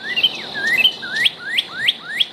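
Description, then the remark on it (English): Birds chirping and tweeting, a series of bright rising whistled notes repeated in a quick, regular rhythm, clear over a faint background hiss, with no talking. “Spring has sprung as bird watching takes flight, with more of us paying attention to tweets and not the Twitter variety.”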